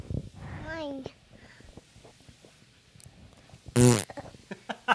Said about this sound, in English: And one little fart